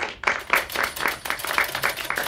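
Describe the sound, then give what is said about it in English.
Soft, polite golf clap: about nine light, evenly spaced claps in a steady rhythm, fairly quiet, with no one speaking. “Very nice. Golf clap, everyone.”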